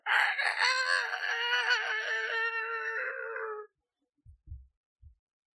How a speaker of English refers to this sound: Off in the distance, you hear the sad croaking crow of the rooster that goes off every morning that you all can never quite seem to find.